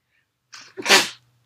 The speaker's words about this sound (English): Oh my gosh, like, I freaking coughed and I sneezed. It was so annoying. I'm sorry.